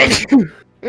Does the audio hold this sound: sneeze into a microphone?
yes